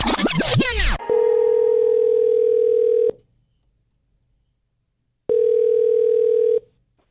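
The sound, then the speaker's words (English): A phone call placed to a randomly chosen person rings out with a steady electronic ringback tone, two long bursts separated by a few seconds of silence, preceded by a brief flurry of sweeping beeps. No one speaks. “You answered the phone call exactly right with our three favorite words”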